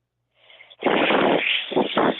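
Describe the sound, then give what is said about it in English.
A person imitates a goose's hiss: a soft breathy onset swells into a loud, raspy, sustained hiss, ending in two shorter forceful bursts of air. “Let's hear your goose hiss.”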